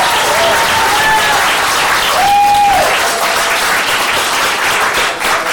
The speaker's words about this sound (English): All right, so big round of applause for both these guys.